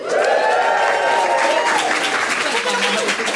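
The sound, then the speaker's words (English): A steady burst of loud applause at a Christmas quiz results announcement fills the whole stretch, dense rapid clapping with some cheering voices rising and falling above it. “Hear that applause.”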